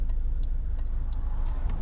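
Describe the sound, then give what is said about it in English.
A truck rumbles past on the road, its deep engine drone loud throughout, while a faint steady ticking, like a turn signal, repeats in the background. “No, this damn truck.”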